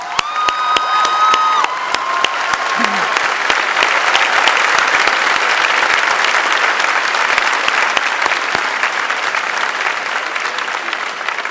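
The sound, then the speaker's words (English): Sustained applause from a large audience at a graduation ceremony for the new graduates, their families and friends, dense and steady for several seconds, with a few faint cheers and whistles rising briefly at the start. “I think this would be a good time to give our new graduates, their families, and friends a big round of applause.”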